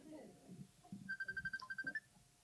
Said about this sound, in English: Sorry, Pastor. My cell phone.